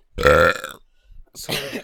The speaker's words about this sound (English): We don't do no 1-2 check. We just burp into it.